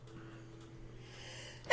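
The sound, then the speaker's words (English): A single sharp, loud sneeze bursts out near the end after a stretch of quiet low hum with no talking. “Gesundheit. Oh, excuse me.”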